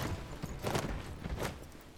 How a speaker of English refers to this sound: Oh yeah, I see your elephant. That's nice. A Varu. Run, bitches. Oh, the battle's on. Look at you. Wow, that elephant's stomping over things.